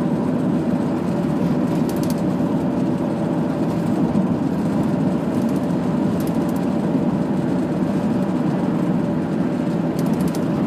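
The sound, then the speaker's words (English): Steady, continuous drone of a car on the move, with a low engine hum and rumbling road noise at an even, unbroken loudness throughout, and no voices. “I swear to God, car, if you're that close behind me, I'll fucking pull my brakes.”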